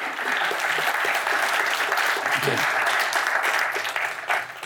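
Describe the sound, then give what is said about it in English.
An audience claps steadily to welcome a speaker, a dense wash of many hands applauding at an even, loud level that holds throughout before easing slightly at the very end. “So please give a big applause to Andrew.”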